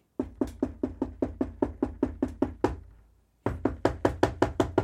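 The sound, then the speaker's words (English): Rapid, firm knocking on a door, a steady series of loud raps that pauses briefly for about a second, then resumes with another quick burst of knocks. No voices. “knocking on the door.”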